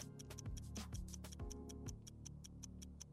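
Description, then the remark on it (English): A game show countdown clock ticks through a 60-second quiz round in a steady, quick rhythm, each crisp tick evenly spaced over a low, sustained musical bed. No one speaks. “Please give me 60 seconds on the clock.”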